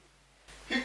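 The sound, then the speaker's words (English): A single sneeze, a short, sharp, breathy burst that comes near the end after a quiet, low hum, with a brief rise in hiss just before it. “Bless you.”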